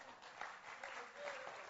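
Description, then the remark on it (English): An audience claps together in a dense, steady burst of applause, moderately loud and continuous for a couple of seconds with no talking over it. “So if you're interested, yeah, go ahead and clap.”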